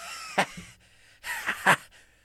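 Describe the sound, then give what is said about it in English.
Someone chokes and splutters after something goes down the wrong pipe: a sharp gasp, then a ragged burst of strained, wheezy coughing with two hard hacks, loud and alone. “Sorry, wrong pipe.”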